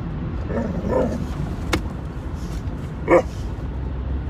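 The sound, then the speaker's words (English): A dog barks twice, a short yip near the start and a sharper bark about two seconds later, inside a car with steady road rumble underneath. “Dog's being obnoxious.”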